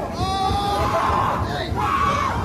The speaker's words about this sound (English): I love the reaction. Who the fuck is screaming like they really give that much of a shit about a pigeon?